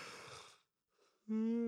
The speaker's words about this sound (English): Now you're making me yawn.